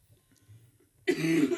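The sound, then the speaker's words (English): A sudden, loud cough breaks a near-silent pause, harsh and throaty, with a rough voiced rasp that carries to the end. “I've not been coughing all day, but I haven't really been speaking all day, so.”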